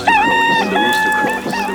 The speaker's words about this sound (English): Rise when the morning comes. Today we're going to call it when the rooster crows.